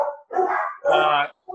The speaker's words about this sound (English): Your dogs do? Yeah, my dogs do. They'll bark at anything. They'll bark at anything.